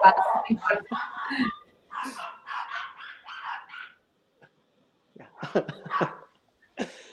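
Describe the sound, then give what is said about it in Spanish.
Several neighborhood dogs bark excitedly at someone passing in front of the house, in rapid, overlapping bursts for a few seconds, fall quiet briefly, then break into another flurry of yaps and barks, moderately loud. “Perdón, los perros de mi barrio se pusieron locos.”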